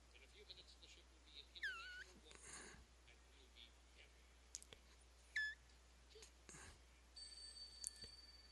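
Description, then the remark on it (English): An old telephone bell rings faintly near the end, a metallic trill among scattered clicks, short chirps and soft rustling noises in a quiet background. “Love the old phone.”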